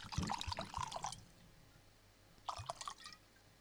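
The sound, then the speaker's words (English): Whiskey splashes and trickles into a glass in two bursts, a longer pour followed by a shorter one after a brief pause, pouring a very large whiskey, with no voices. “To pour a very large whiskey.”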